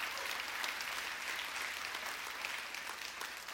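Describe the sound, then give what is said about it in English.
A large audience in a church claps steadily to thank God, a dense wash of many hands applauding together with no individual beats standing out, sustained at an even level throughout. “Come on and clap your hands and thank God for that.”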